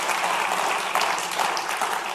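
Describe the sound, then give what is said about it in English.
A church audience clapping together for the Lord, a dense, steady wash of applause that stays loud and even throughout with no voices over it. “That's worth applauding the Lord on, actually.”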